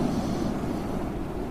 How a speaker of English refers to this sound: The launch is idling out there, Mrs. McDonough. Bottom of the stairs. All you gotta do is cast off, press the drive lever, head straight on the way it's pointing right now.